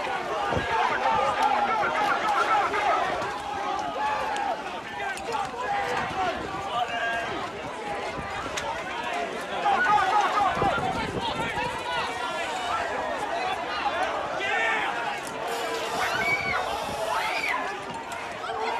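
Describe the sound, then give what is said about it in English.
A large crowd surges forward in a loud, chaotic rush, trampling over police, with many overlapping shouts and yells over the scuffle of running feet, sustained throughout. “The crowd just fucking mowed them over.”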